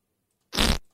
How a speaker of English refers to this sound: Here it is. It's a pretty high quality fart sound. Yeah, it's effect. Not bad.